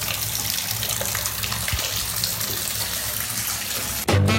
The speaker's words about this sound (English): I've run the bath.